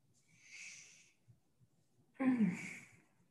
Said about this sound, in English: Oh, I keep yawning.